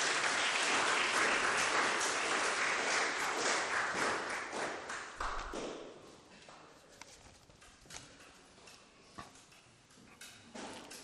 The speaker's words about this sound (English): Thank you to my volunteers. Give them a round of applause.